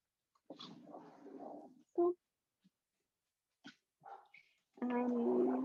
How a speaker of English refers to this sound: I'm gonna let my dog out.